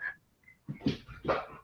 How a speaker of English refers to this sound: Yeah, that was the two dogs came running into the room there. So, yeah, there you go. You hear them going. They came to say hi.